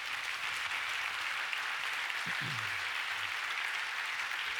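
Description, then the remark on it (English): An audience claps steadily for several seconds for volunteers coming out to help, a dense, even wash of many hands with no pauses, and a brief low vocal sound rises faintly under the applause midway. “You'll have to clap loudly because otherwise they'll feel shortchanged.”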